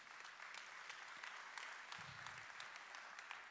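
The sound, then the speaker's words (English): An audience gives the Lord a round of applause during a sermon, clapping steadily in a dense, continuous round, many hands overlapping with sharp crackling bursts, holding at an even level for several seconds with no voices. “Somebody give the Lord a big round of applause.”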